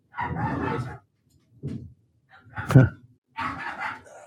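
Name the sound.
excited dogs barking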